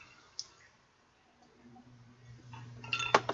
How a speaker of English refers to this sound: I think on that note, Tommy, we should clink it up